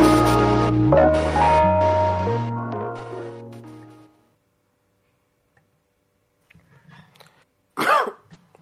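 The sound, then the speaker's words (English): A song with deep bass fades out into silence, followed by a few soft, rough throat-clearing rasps and then one sharp, loud cough near the end. “Excuse me, it's probably why I shouldn't smoke and do a podcast.”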